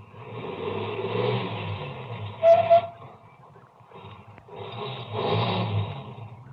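A car that has just passed slows and stops, its engine rumbling and revving, gives a short tire squeal as it turns around, drops to a low idle, then swells again as it drives back toward the listener. No one speaks.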